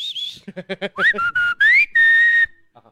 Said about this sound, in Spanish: Ahora sí, tú ya no chiflas, güey. Ya no chiflas.